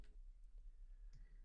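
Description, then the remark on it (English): A few soft, sparse clicks of keys being pressed on a computer numeric keypad while entering a zip code, irregularly spaced and faint, over a low steady background hum with no talking. “Apparently, there's no period in zip codes. It's right next to the dot on my numeric keypad.”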